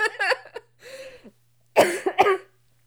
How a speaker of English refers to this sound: No, I'm fine. I'm fine. Okay. Sorry, I'm coughing.